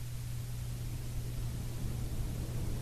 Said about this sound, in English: So we're going to give this another try. I'm going to turn it on right now. There it goes. We're getting some hum from the machine.